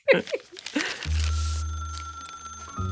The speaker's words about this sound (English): His telephone rang. He let it buzz a few times while he lit a cigar.